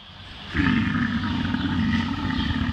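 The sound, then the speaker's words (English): A cow burps, releasing methane: one long, deep, rumbling belch that starts abruptly after a moment of quiet and holds steady and loud for over two seconds. No one speaks. “What does a burping cow sound like?”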